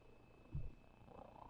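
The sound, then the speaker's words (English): A cat purrs softly, a low, faint rumble that swells briefly midway before settling back into quiet background hiss. No one speaks. “Everybody hear your purrs, right?”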